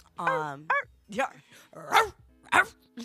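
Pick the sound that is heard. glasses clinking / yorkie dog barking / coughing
yorkie dog barking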